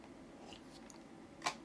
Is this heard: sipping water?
yes